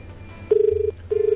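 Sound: telephone ringing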